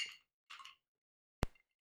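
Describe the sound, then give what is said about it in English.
Glasses of White Ukrainian cocktail clinking together in a toast, a few quick bright chinks spaced over a second or so, the last one sharper with a brief ringing tail. No voices, fairly soft overall. “Cheers.”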